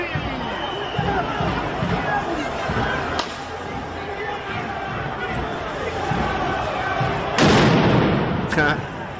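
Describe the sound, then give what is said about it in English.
Sharp fireworks blasts crack over a constant roar of crowd noise: one sudden bang early on, then a louder burst with a quick follow-up pop near the end. “Fireworks.”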